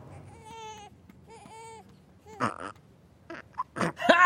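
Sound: infant simulator doll burping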